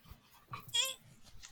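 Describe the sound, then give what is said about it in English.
A brief, high-pitched puppy whimper, a single thin whining cry lasting under a second, with soft breathy sounds around it. “Oh, puppy.”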